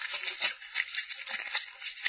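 Crisp, crinkly paper rustling in uneven bursts, a dry scratchy crackle as slips of blotting paper are rummaged through and pulled from a hat, with no voices.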